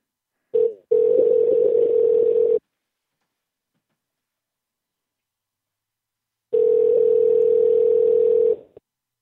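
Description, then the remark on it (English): A steady, loud telephone dial tone hums for about two seconds after a brief blip, falls silent for several seconds, then sounds again just as long. No one speaks. “The hell's wrong with the phone?”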